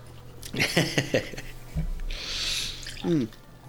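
A 10% blueberry-fruited imperial stout pours into a glass, a soft foamy hiss swelling for about a second, preceded by a few light knocks and faint murmuring.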